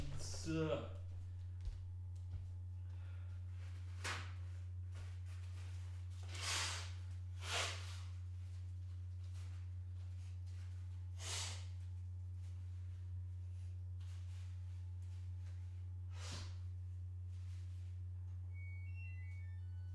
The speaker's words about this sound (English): I think I have to blow my nose real quick. Oh, man. It's like this one booger just bothering them.